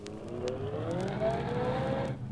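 A car engine revs and the car pulls away from a traffic signal, its steady motor drone climbing in pitch as the vehicle accelerates, loud throughout with no one speaking.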